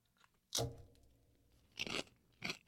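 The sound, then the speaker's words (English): Three loud crunches of someone biting into crisp potato chips with French onion dip, the first sharp and strong, followed by two shorter bursts of chewing, with no talking. “We just want you to hear the full crunch.”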